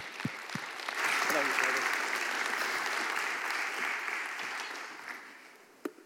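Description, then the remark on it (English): An audience at FBC church breaks into sustained applause for a guest speaker in the morning, a dense wash of clapping that swells quickly, holds steady for several seconds, then gradually thins out, with a few sharp individual claps near the end. “So let's give him a big FBC, I love you this morning, and a big round of applause.”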